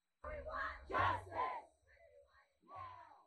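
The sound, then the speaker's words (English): A crowd of about 150 protesters chants in unison at the city courthouse in Ithaca during a two-hour demonstration and die-in, several loud rhythmic shouted phrases with brief pauses, voices blending together outdoors. “Last month, after the climate strike occurred downtown, some activists went to the Ithaca City Courthouse to participate in a two-hour demonstration and die in protest in a crowd of about 150 people.”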